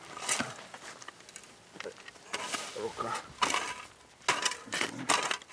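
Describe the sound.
Shovels bite into earth with repeated gritty scrapes and crunches, irregular strokes close by, the loose soil and stones clinking as it's dug, with faint voices murmuring in the background.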